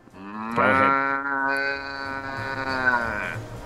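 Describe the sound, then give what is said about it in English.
A person bellows one long, loud imitation of a cow's moo, a low droning tone with rich harmonics that holds steady for over three seconds before trailing off. “Can you please, as our newest cow onto the cow paddock, can you please give us your biggest, loudest, longest moo?”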